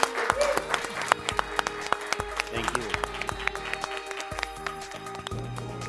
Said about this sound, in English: And another great round of applause